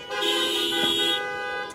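A car horn blares in one long, steady honk lasting nearly two seconds, loud, with a bright buzzy tone that holds level before cutting off.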